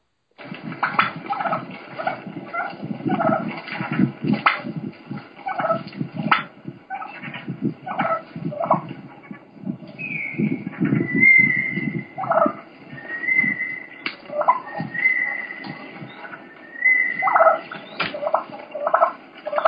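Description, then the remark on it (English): Wild turkeys purr in a steady low, rolling rattle, broken by sharp, irregular clucks. About midway it leads into fighting, with thin high-pitched squeals and whines and fighting purrs over the continuing purring. “This next clip is a bunch of purring and clucking, and then it leads into fighting and fighting purr.”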